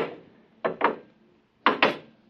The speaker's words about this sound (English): The door's closed behind us. Try the lock. No, it's no use.